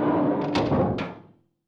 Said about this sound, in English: Close the door.